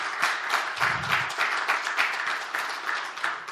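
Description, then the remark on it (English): An audience at a service applauds the choir, choir director, music minister and pianist, many hands clapping in a dense, steady patter that holds at an even, moderately loud level throughout, with no speech over it. “Those of you that don't know, that was a cheap way for me to get a round of applause before I even start.”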